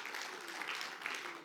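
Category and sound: crowd, applause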